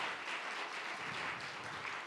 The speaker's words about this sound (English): I want to welcome all our first-time guests. Thank you for coming. I'm glad that you could be here with us this evening. Let's give them a hand clap of just thanks.